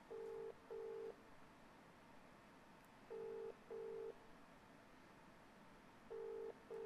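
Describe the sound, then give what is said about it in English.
A phone ringback tone from an outgoing call sounds from the earpiece, a pair of short buzzing pulses repeating every few seconds, steady and fairly quiet against a faint background hiss, with no one talking. “why is Mark trying to phone me? It's voicemail.”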